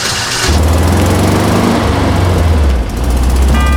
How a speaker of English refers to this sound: Revved the engine loudly, sending the combi jerking violently up the road, like it was being driven by a kangaroo receiving shock therapy.